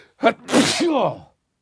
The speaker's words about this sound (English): I'm going to sneeze. Should I share it with you? Oh, my God. You know when you just let them...